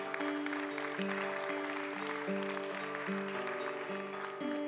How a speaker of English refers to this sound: Yes, come on, one last time, let's give it up for these guys. Applaudissez-les.